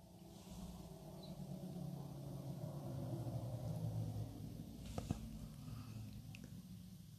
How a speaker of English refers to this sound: Is that a car? Yeah. Why was that creepy? It's a... I'm never scared of a car. And right now, because these creepy facts, a car passed by outside.